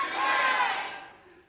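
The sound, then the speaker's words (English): A crowd in a venue in North Platte yells out the car brands they are most loyal to, all at once on a count of three: a loud jumbled burst of many overlapping voices that swells for about a second and then trails off. “On three, yell it out.”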